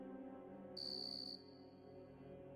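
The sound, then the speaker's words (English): A single shrill, high-pitched cricket chirp rings out for about half a second, then lingers faintly, over a steady low hum with no voices. “The thing about a cricket chirping is the sound echoes.”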